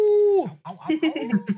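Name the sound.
voice imitating a howl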